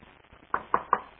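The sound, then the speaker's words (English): Three sharp wooden knocks in quick, even succession, like a chair being bumped or shifted, standing out against a quiet background. “خلاص, leave the chair alone.”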